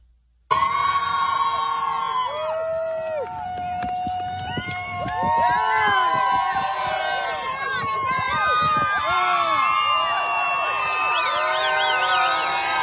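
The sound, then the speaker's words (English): A large crowd in Detroit roars and shouts continuously and loudly as Donald Trump arrives with his motorcade, with whistles and rising, falling siren-like wails cutting through the dense wall of voices. “So, massive crowds, massive energy.”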